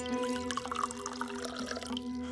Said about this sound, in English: Pour me another before you ask.